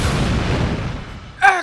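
explosion sound effect

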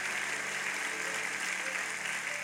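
audience clapping hands

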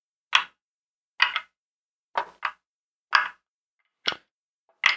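dice being rolled

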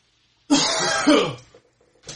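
coughing

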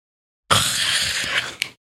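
big yawn

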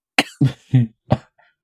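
coughing

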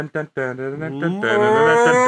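cattle mooing

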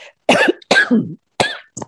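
cough and throat clearing

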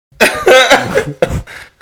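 fake cough

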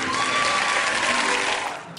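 audience applause and cheering

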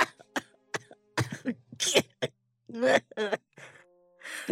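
coughing and sputtering

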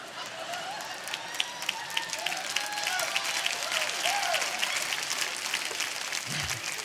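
audience clapping

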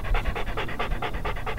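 dog panting

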